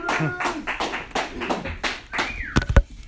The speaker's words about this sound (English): Can you get your hands clapping, get ready?